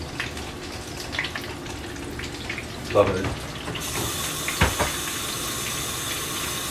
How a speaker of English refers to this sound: We should be at 365 degrees, and we are. So just give it a second. You guys are gonna hear that perfect sound of frying. Here we go. Yes, beautiful. We're gonna do about 3 pieces at a time because I wanna make sure that they're cooked evenly.